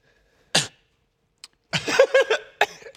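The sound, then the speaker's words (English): A sharp, explosive cough bursts out, followed after a pause by a longer, rougher stretch of coughing and hacking, fairly loud with no talking. “Just got a little cough.”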